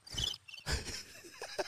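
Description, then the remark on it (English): A brief cricket chirping sound effect: a few quick, high, trilling bursts over about two seconds, clear, with no talking over it. “Why'd you just do the cricket?”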